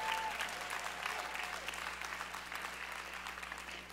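A church audience claps their hands to give praise to Jesus, many hands clapping in a dense, continuous wash of sharp claps at a fairly even level, with no voices standing out.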